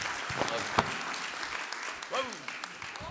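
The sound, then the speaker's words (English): A church audience applauds a preacher as he comes to the stage, a dense, even wash of clapping for about three seconds with a couple of brief rising voices or whoops cutting through it. “Give this man a round of applause.”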